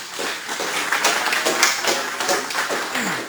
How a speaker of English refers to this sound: Guys, give him a round of applause.